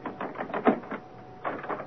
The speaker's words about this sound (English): Miss Jane must see for herself what has for so long been hidden on the third floor of Thornfield Hall. Grace, pull. Unlock the door.